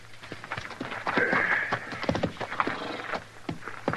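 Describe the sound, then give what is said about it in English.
Horses' hooves clip-clop steadily and unevenly, several sharp knocks overlapping as if more than one animal is moving, with a soft background hum and no talking. “We aren't after your horses. We're only admiring them.”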